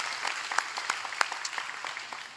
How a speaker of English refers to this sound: Now clap your hands for people who have made a decision today. So good. So good. So good.